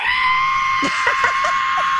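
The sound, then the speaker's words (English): A person vocally imitates a shrill sound somewhere between a screech and a whistle, holding one piercing, high-pitched note steadily for the whole stretch while a few short lower yelps break in midway. “Because he could have, he said it was between a screech and a whistle, and he could have left it there to our imagination.”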